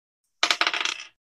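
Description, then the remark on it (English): Dice clatter across a hard surface in a quick burst of bright, rattling clicks that tumble rapidly and settle within about a second, rolled for an intimidation check. No voices accompany the sound. “Roll intimidation.”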